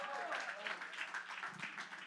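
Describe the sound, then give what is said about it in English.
An audience at a Bible teaching claps their hands together for a participant, a dense, steady patter of many hands lasting about two seconds, with some voices mixed in underneath. “Oh, hey, give a hand clap for”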